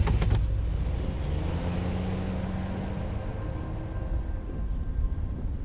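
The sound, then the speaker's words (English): A police car's engine rumbles steadily as a detective pulls out with a woman in the back, a short sharp knock at the very start, then a continuous low drone with faint tonal whine, no voices. “Detective Blow put Lydia into the back of the police car and pulled out.”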